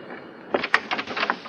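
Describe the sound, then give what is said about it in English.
A door opens after a brief quiet moment, with a sharp click followed by a short run of rattling and scraping movement, moderately loud, with no voices. “Oh, I forgot to knock. I'm terribly sorry.”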